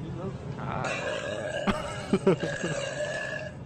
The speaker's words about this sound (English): burp on your mashed potatoes. I bet you wish you can buy all the products that I just burped on hot. Too bad.